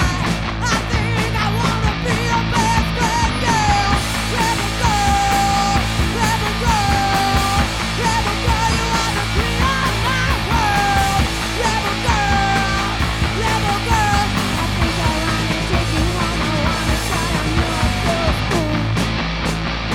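A loud, raw riot grrrl punk rock song plays continuously, with driving distorted guitars and drums under screamed, sliding vocal lines that cut through the dense mix for the whole stretch.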